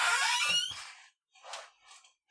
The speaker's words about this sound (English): Like every time I try to like move forward and back, like that chair squeaks, and I gotta adjust the microphone.